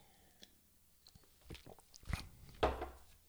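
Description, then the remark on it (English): A quick sip of Alpine Beer Company's Windows Up beer: a few soft slurping and gulping sounds, then a louder swallow near the end, with no talking. “I'm going to take a real quick sip before we move forward.”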